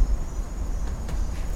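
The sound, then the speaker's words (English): Faint crickets chirp steadily in the distance over a low, rumbling background hum, with no one speaking. “You hear the crickets in the distance?”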